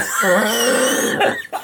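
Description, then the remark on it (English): A loud wheezing cough: one drawn-out, raspy expulsion with a whistling, strained tone, trailing off into a couple of short rough catches at the end. “did you hear that wheezing cough?”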